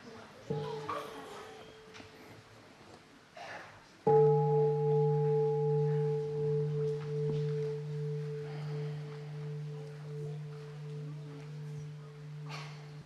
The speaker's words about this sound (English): Second question, listen to the bell.